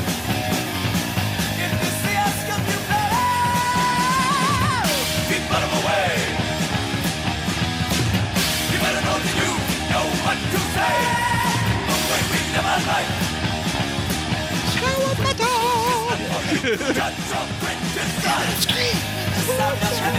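Loud, dense heavy metal track with high, wailing screamed vocals soaring over pounding drums and distorted guitars, playing continuously at full volume throughout.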